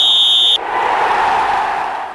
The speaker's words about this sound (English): Let's play ball! Whistle!